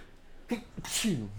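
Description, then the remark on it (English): A single fairly loud sneeze: a short catching inhale, then a sharp, breathy burst that trails off into a brief voiced tail. “God bless you.”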